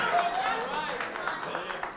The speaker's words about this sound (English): Thank you for them few claps.